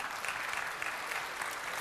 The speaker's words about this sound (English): You ought to clap at that, all right?